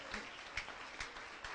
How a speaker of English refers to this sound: Put your hands together and give the Lord a great, great, great, great, great, great big old clap offering.